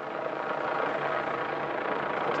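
A steady, droning engine roar fills the air without a break, a police helicopter flying overhead guarding a nuclear waste transport through France and Germany, fairly loud and constant with no voices.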